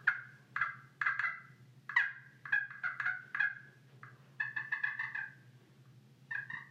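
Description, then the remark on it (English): Soft rolling turkey purrs made on a slate call with a plastic striker, a string of short trilled bursts repeated several times, with a faint low hum underneath and no talking. “And then little purrs like that sometimes.”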